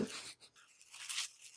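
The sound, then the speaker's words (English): Crinkly, hissing rustles of wrapping paper being handled and peeled open as a gift is unwrapped, with two layers of wrapping paper plus tissue paper, in soft uneven bursts with a brief pause partway, fairly quiet and with no voices. “Trying really hard not to rip it, and it's like...”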